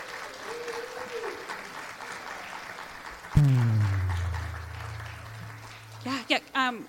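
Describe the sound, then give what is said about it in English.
A crowd at an event applauds steadily to thank donors who come up to receive a thank-you gift, with dense, crackling clapping, then a loud low droning tone cuts in over it, followed by brief voices near the end. “And then if we could just all give them a round of applause.”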